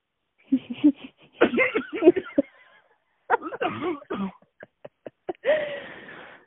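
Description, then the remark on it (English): Harsh coughing comes in several rough bursts, with throat clearing and short pauses between fits, ending on one strained, raspy cough. “The cough is coming.”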